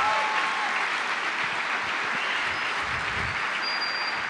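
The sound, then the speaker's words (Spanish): Steady audience applause, a dense wash of clapping hands that holds at an even, fairly loud level throughout, with no voices standing out. “Ese aplauso está como medio maluco, medio...”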